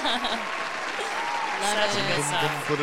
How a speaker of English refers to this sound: Oh, clap.